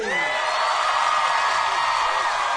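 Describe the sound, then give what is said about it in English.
A crowd cheers loudly in a sustained, dense roar for Kermit and Pepe when the host asks it to pick a winner. A few rising and falling whoops cut through near the start, and the cheering fills the whole stretch without a break. “Pretty big ovation.”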